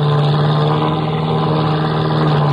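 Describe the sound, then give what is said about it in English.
A crop-dusting plane flying overhead, its engine droning loudly and steadily, a low buzzing hum with a strong, unbroken pitch that holds throughout, with no voices. “Looks like a crop dusting plane to me”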